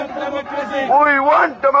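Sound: protest crowd chanting slogans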